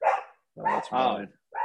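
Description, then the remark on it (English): Puppies barking in a short flurry of high, yappy barks: a burst, a pause, two quick barks back to back, then one more starting at the end. “who's got the puppies?”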